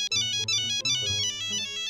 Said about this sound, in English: So we go over to the other side of the room where this big-ass vent is, and the fucking Nokia phone just starts going ballistic.